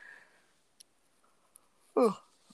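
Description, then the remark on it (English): A short, breathy yawn from a person swells briefly near the end, surrounded by near silence and a few tiny clicks. “Excuse me, I'm yawning like crazy right now.”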